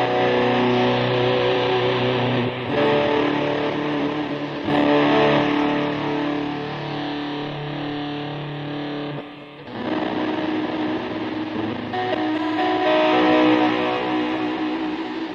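A distorted electric guitar played through a pedal board with a compressor, delay and an Electro-Harmonix micro synthesizer pedal giving the distortion, plays sustained, dense chords with a delay trailing each note, the compressed tone staying loud and even throughout with brief dips between phrases; no one speaks.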